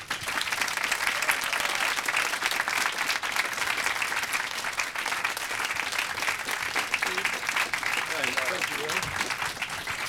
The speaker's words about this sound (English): So first of all, could you give a very large round of applause for Mr. Stephen Fry?